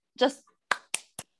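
A short vocal sound, then three sharp, evenly spaced hand claps in praise of the MCU character Wanda Maximoff, the Scarlet Witch, each a quick crisp smack with a brief tail, fairly loud against an otherwise silent background.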